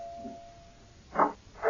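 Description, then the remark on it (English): A doorbell rings twice in quick succession, two short, fairly loud buzzing bursts after a quiet stretch, with no one talking. “I'm coming. Wear out the bell.”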